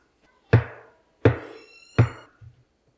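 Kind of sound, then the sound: impact, knocking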